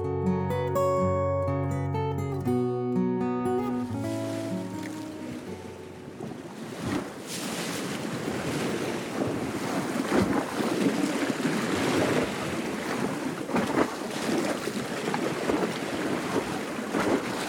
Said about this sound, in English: Just in case you're thinking of cooling off on a hot summer day, we leave you this week on the shores of the Adriatic Sea.